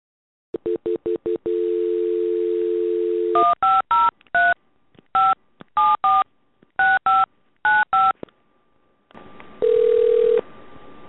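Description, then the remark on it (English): Touch-tone dialing on a landline telephone, calling a healthcare service provider: a quick run of short beeps, a held tone, then a string of paired dual-tone keypresses in uneven bursts, ending with a steady tone over a hissy line. “Landline. It's time for Scam Jam. When Alex keeps a telemarketer on the phone until they're ashamed of themselves.”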